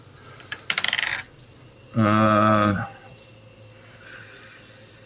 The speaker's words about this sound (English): because you are stealthing, go ahead and roll me two d20s and then take the higher result of the two.